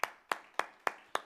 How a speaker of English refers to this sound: Hallelujah. Woo! It's all right to give God a great big hand clap.